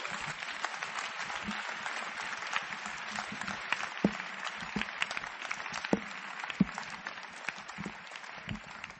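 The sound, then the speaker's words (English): An audience claps for Jesus steadily for several seconds, a dense, sustained wash of many hands with occasional sharper, louder claps standing out. “Clap for Jesus.”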